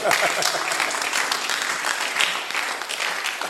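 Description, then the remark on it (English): An audience claps steadily, a dense, continuous patter of many hands, fairly loud, with murmuring voices mixed underneath throughout. “The women are not clapping.”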